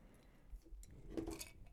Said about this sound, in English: Wine sip.